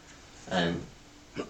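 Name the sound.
hiccup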